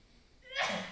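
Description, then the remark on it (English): A single sneeze, a quick rising intake of breath followed by a short, breathy burst, heard at moderate volume with no talking over it. “Bless you.”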